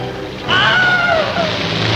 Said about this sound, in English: And that was the scream right there. So that is the famous Wilhelm Scream.